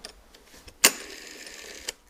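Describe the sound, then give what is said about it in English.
A vintage rotary telephone dial, on an Automatic Electric phone called the Shirley Temple phone, spins back: a sharp click, then a steady, soft mechanical whir from the dial's governor lasting about a second, ending in a small stopping click. Quiet and alone, with no talking. “There's a governing motor in there, a little bit of a governor, so you can speed up or slow down the dials.”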